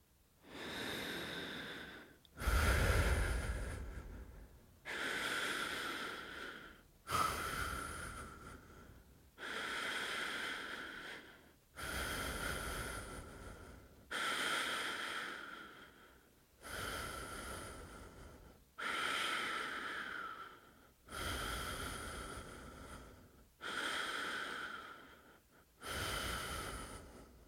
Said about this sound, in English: I'll turn the podcast music down now, so the only sound will come from us breathing together. Listen first, then join in.